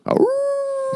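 A dog barks sharply, then its voice slides into a single long, steady howl that holds a clear ringing pitch to the end, loud with no one talking.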